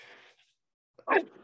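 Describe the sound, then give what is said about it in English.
A single sneeze, sharp and fairly loud, bursts out after a quiet pause, preceded by a soft breathy intake and trailing off quickly. “Bless you.”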